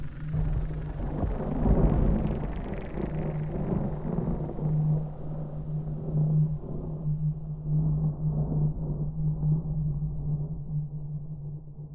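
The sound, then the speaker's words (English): A deep, continuous rumble of thunder rolls on for several seconds, with a louder swell near the start before it settles into a steady low growl, and no voices. “And on dark and stormy nights, its grave howls can still be heard echoing through the hills of Kingsport, Tennessee, amidst the lightning and thunder.”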